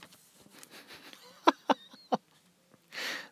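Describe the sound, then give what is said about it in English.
Someone clears their throat with three short, harsh rasps in quick succession, followed by a brief breathy exhale. No one speaks. “Clear my throat.”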